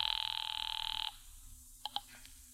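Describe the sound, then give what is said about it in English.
A call from a payphone in a phone booth in town rings through the line to the Cairo police, in one trilling, bright burst lasting about a second, followed by a quiet pause and a couple of brief tones, with no voices present. “Now, when the cab and I had made it back to town, I pulled up at the nearest phone booth.”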